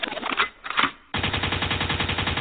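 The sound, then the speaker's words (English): A gunshot sound effect: a couple of short, loud bursts, a brief gap, then a sustained rapid-fire rattle of shots in quick, even succession, like an automatic weapon. No one speaks. “Liquid means rewind, a gun jet means forward.”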